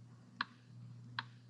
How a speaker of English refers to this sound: The clock kept ticking.